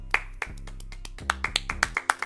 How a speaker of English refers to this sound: We clap. We salute you.